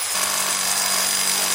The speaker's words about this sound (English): What's that? My new money toolbox. Here's a saw to help cut down my mortgage.